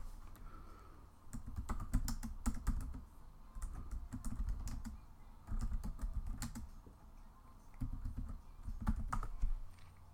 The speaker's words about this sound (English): All right, typing noises. Apologize.